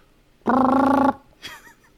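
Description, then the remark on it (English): A voice imitates a trumpet with one steady, buzzy, mid-pitched blast lasting just over half a second, followed by a brief, softer breathy sound. “Can you please do a trumpet sound?”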